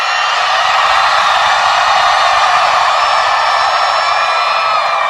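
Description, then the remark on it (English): A huge Coachella festival crowd, asked to scream as loud as they can, screams at full volume, a dense, unbroken roar of thousands of voices that holds steady for several seconds with no one speaking over it. “I want you all to scream as loud as you can.”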